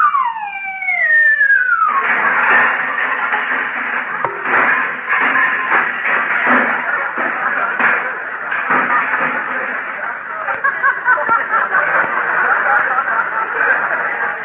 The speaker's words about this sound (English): Gee, listen, Kenny. I hear sleigh bells.